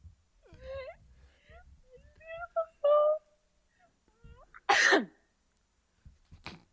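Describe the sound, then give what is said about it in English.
A single sharp, loud sneeze bursts out after some soft talking, with a broad noisy blast that cuts off quickly, followed by a faint breathy sound. “Gesundheit.”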